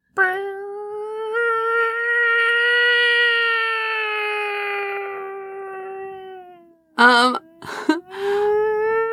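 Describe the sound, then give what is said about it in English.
A loud, drawn-out siren wail holds a steady rising tone for several seconds, sags downward, then returns in short choppy bursts before sounding again. “is that a siren I hear? Not you, Siren, but, like, another siren.”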